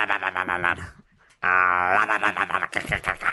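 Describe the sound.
A person imitates a goat with loud, wavering, nasal bleats: one bleat, a short pause, then a longer quivering one running straight into a final shorter bleat.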